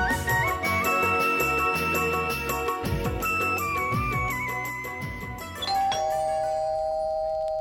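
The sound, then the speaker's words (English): A doorbell rings, playing a bright electronic chime melody with several shifting notes over a few seconds, then ending on one steady, sustained tone. Nobody speaks. “You go and open the door.”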